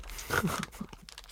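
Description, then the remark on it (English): A snack package being torn open, a quick burst of ripping and crinkling plastic with a few crackly rustles trailing off over about a second. “I can't open mine.”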